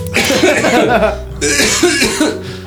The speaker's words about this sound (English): And also those coughs. Yeah. Also those coughs.